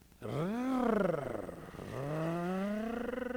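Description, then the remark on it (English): A voice imitates the roar of a car's right front wheel while rolling on a test drive, a buzzy vocal drone that swoops up and down in pitch twice, sustained for a few seconds without words. “it sounds fine, but did you know there's like a roaring”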